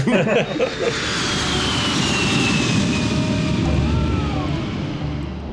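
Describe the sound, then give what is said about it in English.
A steady, loud engine drone fills an airplane cabin as passengers board the plane, with a faint high whine sliding slowly across it and a murmur of voices at the start. “we should play in the clip from Valley of Death where they're on the plane, where they board the plane”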